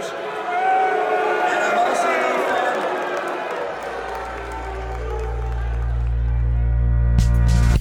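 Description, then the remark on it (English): A large crowd at a state GOP convention boos Romney loudly in a sustained, rolling wave of jeers and shouts, joined midway by a deep low rumble that swells steadily louder until the end. “Still got booed.”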